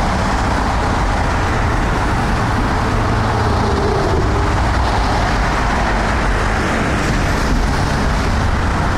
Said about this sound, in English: Cars.